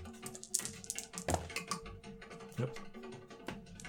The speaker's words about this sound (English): Oh, let's knock these dice to the floor here